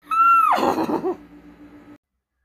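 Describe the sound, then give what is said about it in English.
A loud white horse's whinny opens with a high, steady squeal, then breaks into a shaky, fluttering neigh that fades out after about two seconds. “I cannot stand a white horse.”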